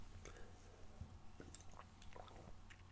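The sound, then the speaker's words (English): Someone takes a quiet sip of water, with soft wet mouth sounds and small swallows scattered over a few seconds against a low steady hum. “Excuse me, I better take a sip of water.”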